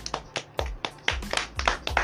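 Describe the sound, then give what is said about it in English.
A quick burst of hand claps, roughly nine sharp slaps in a fairly steady, slightly uneven rhythm, loud and crisp with no voices over them. “You guys are my clap, me to clap for me.”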